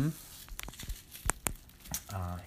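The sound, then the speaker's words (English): Crinkly plastic rustles and crackles in irregular bursts of sharp, bright snaps as items are wrapped, with brief bits of voice at the start and end. “Okay, everyone, we're going to wrap. Do you hear that?”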